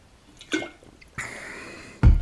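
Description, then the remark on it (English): Someone takes a sip of a ginger lemon drink: a small wet click, then a drawn-out airy slurp lasting under a second, ending in a louder thump or gulp. No talking. “Just a sip of my ginger lemon drink.”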